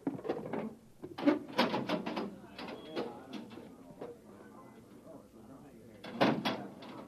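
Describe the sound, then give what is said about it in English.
A heavy metal access door to a manhole, leading down to a northbound road, is hauled open with a series of loud clunks and grinding scrapes, a quieter rattling stretch in the middle, and a final hard thud. “Now stand away from the door,”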